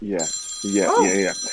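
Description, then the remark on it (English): A phone rings with a bright electronic ringtone: two short bursts of warbling, melodic tones over a steady high whine, fairly loud. “Phone call.”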